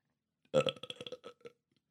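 A single drawn-out, gurgly burp lasting about a second, loud and close, rattling in quick pulses before trailing off into silence.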